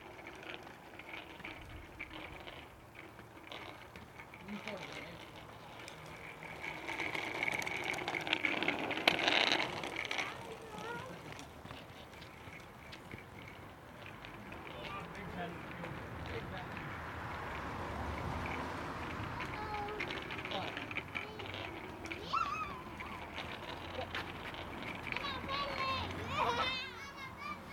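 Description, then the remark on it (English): Children's voices and play sounds over the rolling and scraping of bikes and skates as they race around a large driveway in front of a house, with a steady low rumble of traffic in the background running underneath for the whole stretch. “You can hear traffic there in the background as well.”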